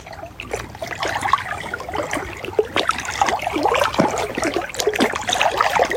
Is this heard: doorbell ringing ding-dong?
no